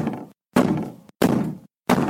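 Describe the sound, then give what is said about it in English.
Heavy, insistent banging, like a fist pounding on a door in a dark basement: several loud, booming thuds in a steady rhythm, each broad and resonant with short silent gaps between. “They were both starting towards the stairs, more than a little startled now, when the knocking became loud, insistent banging.”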